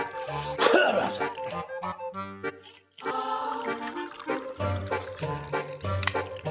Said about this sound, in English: I'm very dry right now. My throat feels like just sandpaper. So give me a second. I need a water break.